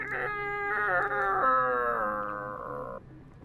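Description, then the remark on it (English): A door creaks slowly open with a long, tonal squeal lasting about three seconds, its pitch wavering and gradually sliding lower before stopping abruptly. No one speaks. “when you hear the gentle creak of a door very slowly opening.”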